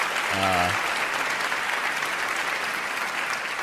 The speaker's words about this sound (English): Wow, really, really sweetening that applause.